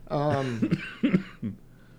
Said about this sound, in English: You coughing? No. Not because of that.